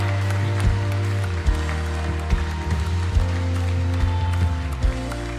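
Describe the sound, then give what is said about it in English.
An audience claps along in a steady rhythm over sustained, bass-heavy worship music, the sharp beats landing roughly every second throughout. “Can we just clap our hands one more time?”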